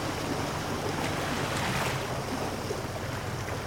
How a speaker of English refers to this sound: I have never seen ocean water bubble and swirl and twist about so much. It's like we're in a cauldron. This is the Old Sow. It's a spot off Deer Island, New Brunswick, that's crazy with whirlpools.